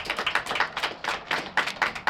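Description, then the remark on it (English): An audience gives a hand clap for God, clapping together in a fast, uneven burst of many overlapping hand claps, sharp and fairly loud, sustained steadily for about two seconds with no voices. “Can you give God a hand clap?”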